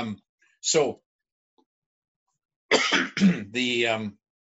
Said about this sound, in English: Excuse me, I had to clear my throat.